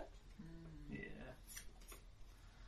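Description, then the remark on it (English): Dice clatter faintly on a table in two or three quick, light knocks, following a brief murmured voice, rolled for fortitude saves. “Dice is rolling”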